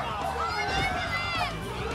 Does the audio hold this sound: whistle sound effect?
no